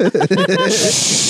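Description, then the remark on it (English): A voice imitates a man's loud urine stream in a public bathroom: brief vocal sounds give way to a steady, loud, breathy hiss that holds for under a second. “Sounds like he's frying chicken over there. Spraying the fucking, cleaning the toilet down.”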